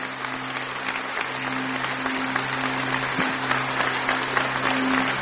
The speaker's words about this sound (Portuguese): Eu queria que você aplaudisse Jesus. Ele é o dono dessa festa. É por isso que estamos aqui. Aplauda mais forte.